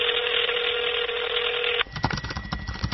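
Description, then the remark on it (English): A steady electronic phone ringing tone of an unanswered call sounds for nearly two seconds, then cuts off abruptly and a voice begins talking. “When the victim's mother tried to get her daughter on the line, there was no answer.”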